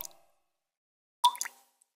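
A water drip sound effect: a clear plop with a bright pitched ring, followed by a quick second splash, after a fading drip tail and a short stretch of silence.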